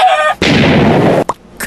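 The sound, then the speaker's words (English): In a listener-made audio bumper, a nasal chicken-like squawk is cut off by a loud rushing burst of noise lasting almost a second, followed by a couple of short clucking pops. “The chicken walked through the forest and then it died.”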